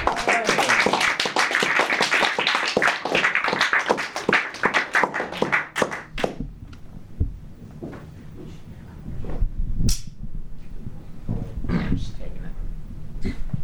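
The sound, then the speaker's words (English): A burst of applause from an audience as a guest is brought up, dense and fairly loud for about six seconds, then thinning to a few scattered claps and soft murmuring voices. “All right, let's bring him up and let's try to get a little bit of applause going for him.”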